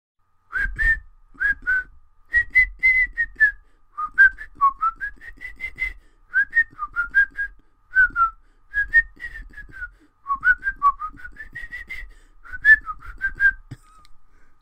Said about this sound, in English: Tuneless whistling.